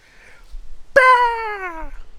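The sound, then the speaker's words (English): A human voice imitates a hawk's screech: one loud, sudden, high-pitched cry that slides downward for about a second, with only faint background noise around it. “I can't screech that high. That's a pretty good hawk.”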